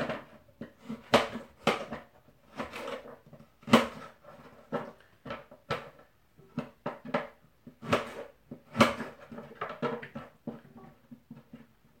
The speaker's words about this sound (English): And the noise that the cutting board is making is because this is one of those novelty cutting boards that actually has a opening under the bottom.